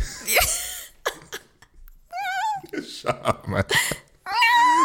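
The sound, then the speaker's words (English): A person's voice mimics a cat's meow, producing a couple of drawn-out, wavering mews, fairly loud, broken up by short throaty noises and bits of speech. “I can do cats. I can be at cats. Meow.”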